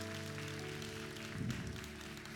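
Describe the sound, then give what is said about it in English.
Steady applause from the women in the audience for their men, a dense wash of many hands clapping throughout, fairly quiet, with a low sustained tone humming underneath and no voices. “Ladies, will you give your men a round of applause?”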